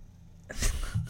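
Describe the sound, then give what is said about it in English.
A harsh, hacking cough from a member of a live audience at the filming of a TV show bursts out after a brief quiet moment, with a second rougher hack following close behind, both loud and raspy. “Someone in the audience has got a real hacking cough.”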